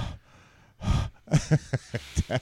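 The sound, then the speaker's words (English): Heavy breathing right up against a microphone: a faint breath, then one loud, long exhale followed by a quick run of short, forceful huffs. No speech. “I'm breathing heavy in the mic because I love you guys.”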